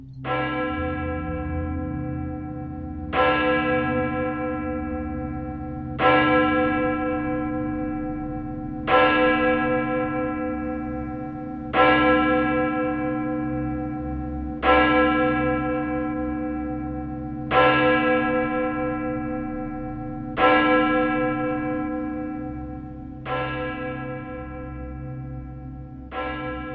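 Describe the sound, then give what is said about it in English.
A village clock bell strikes twelve in slow, evenly spaced strokes about three seconds apart on a freezing, still night, each clear, resonant peal ringing out and fading before the next. No voices. “No sooner had he done so, and then the village clock chimed out 12 times as clear as crystal, ringing on the freezing air of the still night.”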